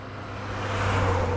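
A truck engine runs with a steady low rumble and droning hum, growing slightly louder over the moment, with no voices.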